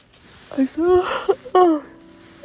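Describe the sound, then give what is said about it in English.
A person yawns, a drawn-out voiced stretch that slides in pitch with breathy air, followed by a second long yawning groan that trails off. “Sorry for the yawning.”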